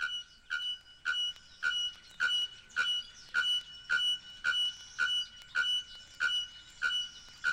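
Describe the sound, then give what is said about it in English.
A bare-throated bellbird's ringing mating call: a steady series of about a dozen sharp, metallic, bell-like notes, evenly spaced roughly every half second, loud and clear with no other sounds. “This is the ringing mating note of the bare-throated bell bird.”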